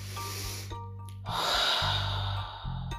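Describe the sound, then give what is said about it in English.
Slow, deep breaths drawn in and let out during a calming breathing exercise, the airy rush of the exhale swelling loudest in the middle, with a low steady hum underneath. “Let's do some deep breathing.”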